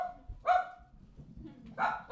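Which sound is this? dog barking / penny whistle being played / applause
dog barking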